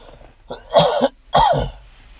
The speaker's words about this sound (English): Sorry, I'm going to have to cough here.